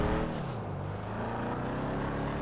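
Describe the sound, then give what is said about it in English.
A Deluxo flying car in a video game drones loudly and steadily, its pitch dipping then climbing again as it sweeps past, with no one talking. “Oh, the Deluxo's right over my... Just went past my...”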